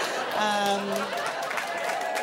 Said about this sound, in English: Oh, nice. Other Canadians clapping or just people appreciating Canadians.